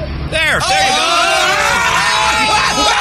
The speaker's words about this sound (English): The screaming is justified. That is justified. Somebody back the bus up just a little. They can't move it. Why? Because the front axle's broken. Yeah, that is a reasonable scream.